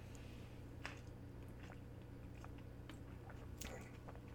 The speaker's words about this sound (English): I'm going to take a little sip of that juice.